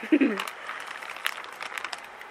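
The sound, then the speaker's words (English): Crinkling and crackling of a plastic chip bag as a man licks chamoy off it, a steady run of small rustles with a few sharper pops, after a brief low vocal sound at the very start. “If you guys could see how much of a fucking fat ass he is, he just licked the fucking plastic bag of chips to lick off the chamoy.”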